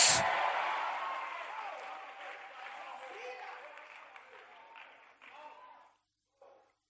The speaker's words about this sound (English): Come on and clap on and shout. Say yes.